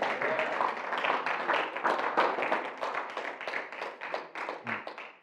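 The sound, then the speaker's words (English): An audience claps steadily for several seconds, a dense, bright patter of many hands with no talking, loud and sustained before tapering slightly at the end. “Some of you haven't clapped, but I still love you.”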